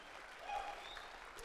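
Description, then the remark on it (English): An audience applauds after a reading of Psalm 23, with a steady, dense wash of clapping that swells slightly midway, with a few faint cheers or whistles mixed in; the applause is fairly soft throughout. “Come on, you can go ahead and give me a clap for that.”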